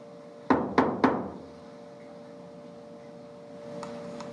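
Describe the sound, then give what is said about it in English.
Three quick, evenly spaced knocks on a wall, made in a knocking game inviting a reply, sharp, followed by a quiet stretch with a steady low hum and a couple of faint taps near the end. “So I'm going to knock on the wall here 3 times, and I would like for you to replicate it.”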